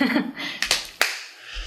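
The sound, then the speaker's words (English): Three sharp hand claps ring out in an uneven little burst, the first two close together and the last after a short pause, following a faint murmur at the start. “Apparently, Ellie is afraid of clapping.”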